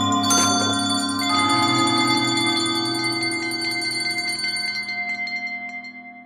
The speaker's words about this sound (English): It was with great astonishment and with a strange, inexplicable dread that as he looked he saw the bell begin to swing. It swung so softly in the outset that it scarcely made a sound, but soon it rang loudly, and so did every bell in the house.